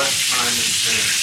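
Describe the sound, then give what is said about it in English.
Seasoned chicken (salt, black pepper, garlic) frying on both sides in hot oil, a steady dense sizzle with crackling and bubbling throughout, loud and continuous with no voices. “Both sides of the chicken. There's a lot going on. It's like bubbling.”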